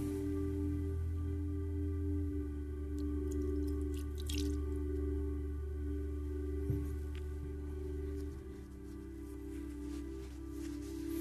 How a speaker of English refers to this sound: so I'm not going to have anybody come close to pour the water over me, but I'm going to just do the last part, the pouring over the fingertips. You can do this at home if you have your bowl of water.